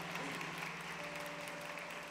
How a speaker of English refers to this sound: Dads, super dads. Everybody clap real huge for dads.